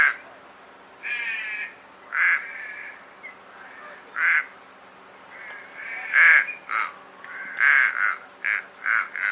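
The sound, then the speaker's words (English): A series of flat, nasal little crow caws, about nine short calls in uneven bursts, some paired, ringing out clearly over a quiet background with no talking. “the little crow, which is found mainly in the desert areas, can be very difficult to distinguish from Teresian crows at times”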